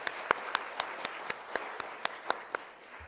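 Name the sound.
audience round of applause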